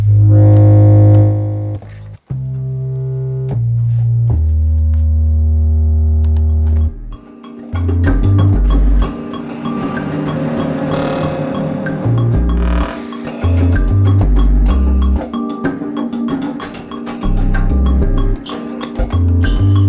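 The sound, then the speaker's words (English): A gritty, distorted synth bass made by pulverising an instrument sound plays low sustained notes, then drops out briefly before returning loud and busy with buzzing harmonics and rhythmic low pulses, no voices present. “I could just sort of pulverise it a bit.”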